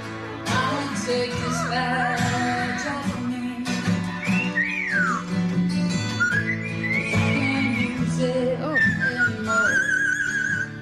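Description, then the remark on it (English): A cockatoo whistles a melodic song tune in sliding, bird-like notes of varying pitch, steady and fairly loud over a constant low background hum, with brief voice-like squawks mixed in. “Name that cockatoon.”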